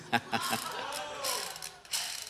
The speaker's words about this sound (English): A drill. Oh, yeah, right. Yes. It goes both directions. An actual drill. Okay, so what we have here is we have a drill. The drill does go both directions.